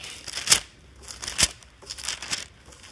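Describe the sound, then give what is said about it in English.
Pages of a Bible being turned to 1 Corinthians chapter 15 by a preacher, with three or four crisp, papery swishes at an unhurried pace, fairly quiet, with no voices. “I'm turning pages. I'm turning pages.”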